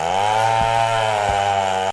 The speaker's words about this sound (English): And I brought a chainsaw.